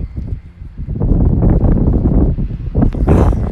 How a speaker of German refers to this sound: Oh mein Gott, vielleicht hört ihr gerade den Wind.